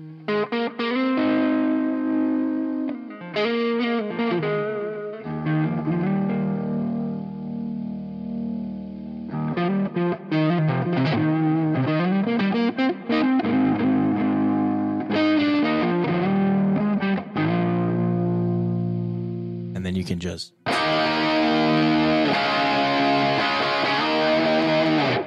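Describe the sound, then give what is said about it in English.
A crunchy, distorted electric guitar plays chords and short riffs, with lush plate reverb washing over the notes, fairly loud and steady with a brief pause before a bright final strum. “And I'm going to stack my reverbs. I'm going to go to the plate lush.”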